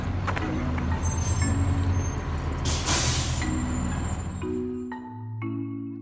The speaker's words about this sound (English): And here comes the bus, it looks like. Bus is. Buses.